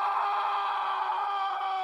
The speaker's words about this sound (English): you just hear this extremely loud, like, guttural scream, like somebody who's just absolutely being tortured, coming from off to your right into the forest